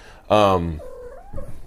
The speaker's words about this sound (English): No, cat, no. Now my kitten trying to grab my microphone.